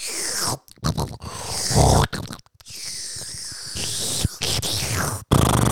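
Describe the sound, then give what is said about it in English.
Wet slurping of sweet porridge in long noisy stretches broken by a few brief pauses, with grunting, chewing mouth sounds mixed in. “This porridge is. I'm just slurping it down.”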